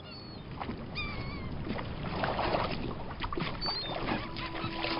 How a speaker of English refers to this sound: Listen! Seagulls! Must be getting close to land.